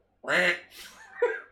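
A loud duck quack rings out, a nasal, buzzy call followed by a couple of shorter, softer quacking sounds trailing after it.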